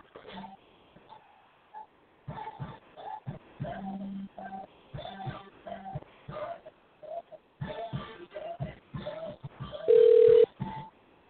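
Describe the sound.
A phone line rings out in repeated steady tones, evenly spaced like an outgoing call waiting to connect, as an interview guest is being called in; it ends with a brief loud beep, and faint, muffled voices murmur underneath.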